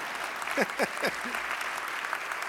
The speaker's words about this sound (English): Some of you aren't clapping.